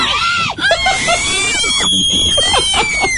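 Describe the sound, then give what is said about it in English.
Loud, sustained high-pitched screaming from several children inside a car after a bear opened the passenger door, overlapping shrieks that barely let up, with voices crowding together. “Stop screaming. Kids, settle down.”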